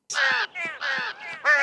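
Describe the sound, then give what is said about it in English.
An anti-death jingle played for Albert Brooks: harsh, raspy crow caws in quick succession, three loud calls alternating with two softer ones, clear with no talking. “I guess, to be safe, I should play the anti-death jingle for him.”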